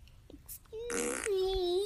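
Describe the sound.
A girl blows a buzzy mouth-fart raspberry lasting over a second, with a harsh sputtering burst in the middle that trails into a steady, mid-pitched vibrating hum.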